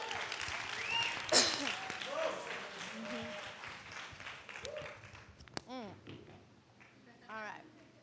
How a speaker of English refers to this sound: Amen? Give God a round of applause.